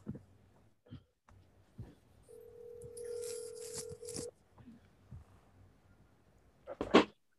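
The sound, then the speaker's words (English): A phone call goes out: a few soft clicks and taps, then a single steady ringing tone lasting about two seconds, followed by quiet handling noises and a sharp, louder burst at the end. “He calls a little funky ass and see if he answers the phone.”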